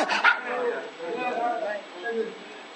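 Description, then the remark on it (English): A dog barks briefly near the start, a short sharp burst followed by a few softer yips, mixed with a man's voice speaking. “Y'all rid of your dog yet?”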